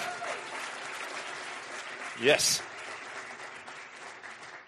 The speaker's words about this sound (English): Applaud him for being here to do this today.